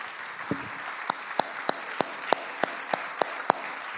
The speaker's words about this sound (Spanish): Démosle fuerte aplauso al Señor.